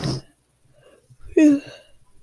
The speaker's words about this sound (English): you guys remember the breathing then? Yeah.